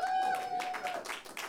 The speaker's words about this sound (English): So round of applause.